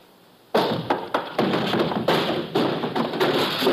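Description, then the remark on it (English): A heavy barrel is set rolling in a warehouse and rumbles along a hard surface, bumping with a rapid series of loud thuds and knocks after a sudden start, then strikes a person. No voices present. “Give me time to start that barrel rolling.”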